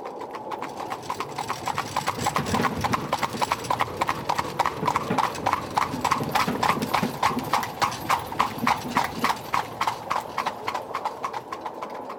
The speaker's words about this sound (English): One time a coach, drawn by four black horses, drove by them.